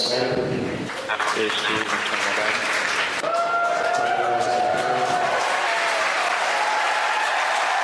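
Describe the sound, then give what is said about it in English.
A crowd bursts into loud, sustained applause and cheering, with excited shouts and whoops rising over steady clapping that continues throughout, as a Falcon 9 first stage successfully lands on a drone ship about 300 kilometers off the coast of Florida. “And as you can hear from the applause, the first stage has successfully landed on Of Course I Still Love You.”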